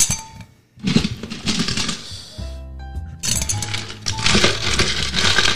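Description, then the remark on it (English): Ice cubes from an ice bucket clatter and clink into a glass of muddled lime and honey for a cocktail, in two busy bursts of bright, rattling knocks, separated by a brief low humming tone, with no talking. “We're going to add some ice.”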